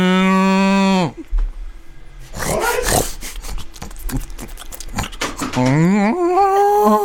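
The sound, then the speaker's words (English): A human voice does a loud cow moo imitating a heifer that slides downward, then a stretch of clattering, scraping noise, then another long rising moo imitation. “Now make it sound like a heifer.”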